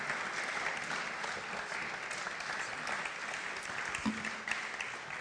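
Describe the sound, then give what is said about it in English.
Sustained applause from an audience after a prayer of blessing, a dense steady patter of many hands clapping at an even level for several seconds, with no voices standing out. “We give them a big round of applause.”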